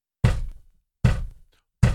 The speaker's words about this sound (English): And so she starts recording it, and he's just reading his paper, and he's punching her chair, punching the back of her chair over and over and over again because he asked her to move it up.